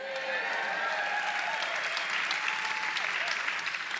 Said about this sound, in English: In my notes here, it says, pause for raucous applause. So you guys are doing it.